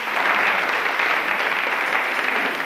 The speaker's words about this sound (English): I'd like them to come up here quickly. You too, my brother and sister. Come on. Here, from Canvey Island. Come on, give them a clap. Give them a clap.